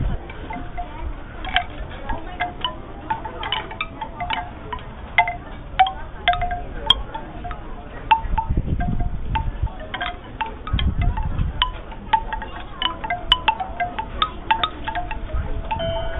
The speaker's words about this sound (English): Speaking of sound seeing, as people are walking by me on the pier, one of the shops has some chimes set up. There's some wooden chimes I'll let you hear.